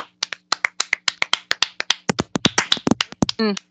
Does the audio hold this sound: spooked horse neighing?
no